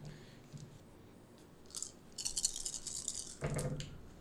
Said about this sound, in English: Go ahead and roll some dice for me, if you would. You have your six-siders handy? How many do I need? Six.